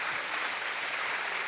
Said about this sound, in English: Just give them another round of applause.